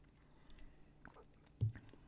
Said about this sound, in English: Hang on. I need another sip.